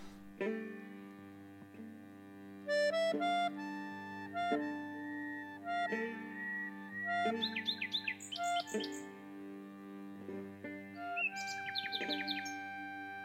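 A nightingale sings bright trills and rapid chirps in bursts over sustained, mellow instrumental notes, the bird's phrases clear, growing busier toward the end.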